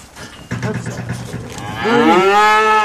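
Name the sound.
cow mooing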